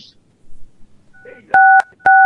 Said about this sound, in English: Maybe we can play, like, a dial tone